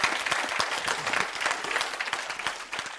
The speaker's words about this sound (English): I'll wait while you clap.